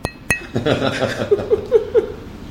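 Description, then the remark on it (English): Two sharp metallic clinks ring out as drink cans are tapped together in a toast, followed by a cluster of voices and light chuckling. “Cheers. Cheers. The can is good.”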